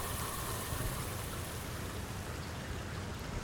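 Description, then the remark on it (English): Steady rain pours down in a dense, even hiss, with countless drops pattering on a surface. No voices, just the constant wash of rainfall throughout. “It sizzles a moment before the rain puts it out.”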